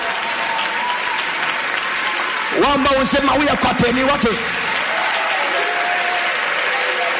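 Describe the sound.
A crowd at a religious service claps steadily throughout in a dense, continuous patter to receive visas, with voices briefly rising loudly over the applause in the middle before fading back to just clapping.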